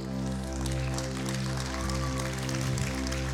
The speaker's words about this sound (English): Now, if you're gonna clap, don't patty cake, just go ahead and clap.